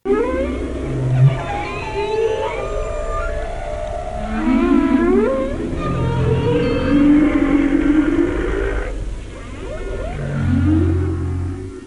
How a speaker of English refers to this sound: What precisely a whale's song means to other whales is something that only the whales know for sure. This is what a humpback song sounds like.